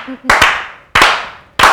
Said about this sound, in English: Now, let's begin the show in the best fashion we know how by slow clapping these beautiful black people in, shall we?